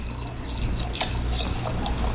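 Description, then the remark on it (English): Wine glugs and splashes steadily from a bottle into a glass, a continuous pour with small bubbling bursts and no voices over it. “Let me pour one out.”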